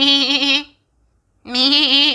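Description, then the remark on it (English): A goat bleats twice, loud, each call a wavering, nasal cry with a brief silent pause between them and nothing else in the background. “A hungry black goat was seen to be grazing in the grassland.”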